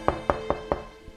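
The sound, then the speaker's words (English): Four firm, evenly spaced knocks on a door, followed after a short pause by a softer fifth tap. No one speaks. “Someone's at the door.”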